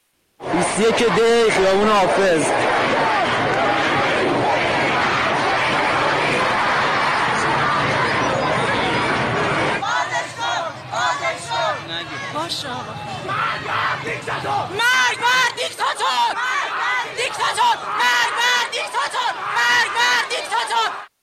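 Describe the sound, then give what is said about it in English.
A large anti-government protest crowd in Iran roars and chants together in a loud, dense wall of voices, then breaks into choppier bursts of shouting and yelling that carry on to the end. “Here's some footage of what the protests looked like.”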